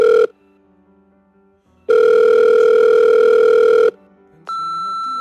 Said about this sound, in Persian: تلفن ناگهان زنگ میخوره ولی جواب نمیده، میره روی پیامگیر.